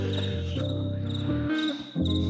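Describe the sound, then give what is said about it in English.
A cricket chirps steadily in a rapid, rhythmic pulse, fairly clear, keeping the beat within a music track over low sustained musical tones that shift pitch now and then. “I did just notice that there's a cricket keeping beat on this track.”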